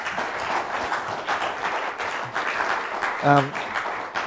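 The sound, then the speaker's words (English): A crowd applauds steadily to give glory to God, a dense wash of many hands clapping at once, with a brief tonal voice or whoop rising above it near the end. “You know, we should give him a round of applause and give him glory.”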